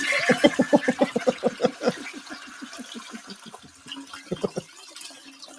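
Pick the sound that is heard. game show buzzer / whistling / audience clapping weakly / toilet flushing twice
toilet flushing twice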